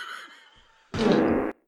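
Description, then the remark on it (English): A loud, buzzy fart lasting about half a second, raspy and rumbling, with a fainter whiny tone before it and an abrupt stop afterward. “Don't fart again!”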